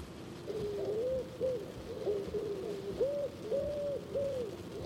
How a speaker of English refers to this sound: I listened to cassettes of birdsong I'd recorded that summer we spent house-sitting for Gordon's orchestra friends down by the beach.